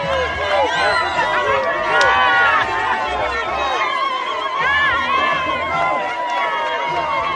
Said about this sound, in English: with thousands of party supporters cheering and ululating when his motorcade made its way into the stadium.